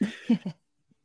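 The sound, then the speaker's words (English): A short cough, three quick rough bursts in a row that stop abruptly, followed by silence. No one is talking. “But I thank you for your patience between my coughing, if you happen to hear any of it.”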